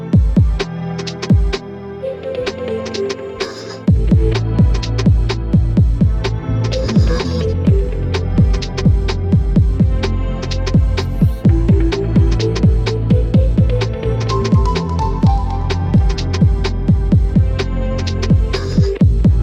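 A loud, continuous music track plays with a steady drum beat, layered sustained synth and bass tones, and a brief drop in the low end just before the groove fully kicks in.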